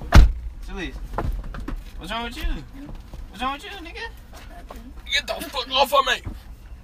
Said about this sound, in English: Close the door.